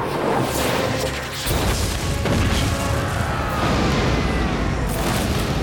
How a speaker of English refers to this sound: Open fire! At Satan's word, the fuses were lit, and fire belched forth from his newly constructed cannons.